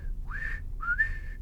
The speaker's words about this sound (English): he looked over at Dallas Willard, who was whistling